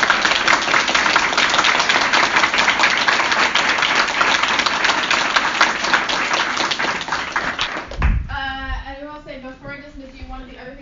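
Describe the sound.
A crowd bursts into steady, loud applause, a dense rush of many hands clapping for about eight seconds before it cuts off and a voice begins speaking.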